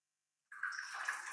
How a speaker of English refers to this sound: Dramatic pour.